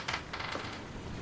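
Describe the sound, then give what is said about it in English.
Dice tumbling in a brand new dice rolling tray: a few quick, faint clattering rattles early on, then a soft rolling rumble as they settle, with no voices. “It's this new dice rolling system you've got for me. Oh, you don't like my brand new dice rolling tray?”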